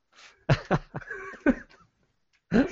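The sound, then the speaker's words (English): A harsh, hacking cough from a person still recovering from being sick sounds in a rapid cluster of four or five rough bursts, then a short pause before one more loud cough, with no talking. “I still have a hacking cough.”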